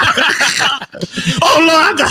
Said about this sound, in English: Everything, you'd be like, man, no, I'm coughing.